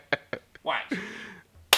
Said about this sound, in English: Close the door. Is that what a door sound like when you close it? A clap. It will until I edit it. When I edit it, it's going to sound just like a door.